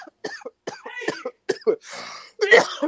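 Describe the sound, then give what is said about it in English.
A hoarse fit of coughing from a person fighting off a cough that is not corona: about five rough bursts in quick succession, a raspy drawn breath partway through, then one last strained, throaty cough. “Just like I'm fighting off this cough that's not corona.”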